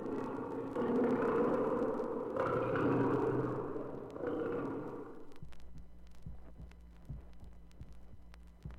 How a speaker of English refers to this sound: The roar of a lion.